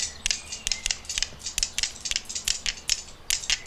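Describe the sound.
Dice clack against a hard surface in a quick, loosely uneven galloping rhythm, a steady stream of sharp, bright clicks imitating horse hooves, with no voices.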